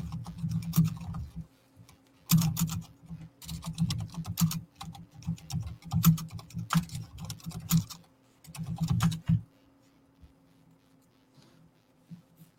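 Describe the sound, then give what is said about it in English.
Rapid clacking of keys on a computer keyboard, coming in uneven bursts with short pauses between them, then trailing off into near silence. “My keyboard stopped working for a second.”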